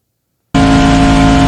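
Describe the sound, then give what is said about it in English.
After a brief silence, a race car engine roars in abruptly from inside the car at Daytona at almost 200 miles an hour, about 6,500 RPM: a loud, steady, buzzing drone with a constant high-revving pitch and no voices. “So this is Daytona in car at almost 200 miles an hour.”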